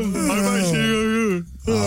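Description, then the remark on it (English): A person imitates a Wookiee growl, going for Chewbacca: a loud, drawn-out warbling groan that wavers in pitch, breaks off briefly near the end, then starts up again. “I feel like Chewbacca I was going for.”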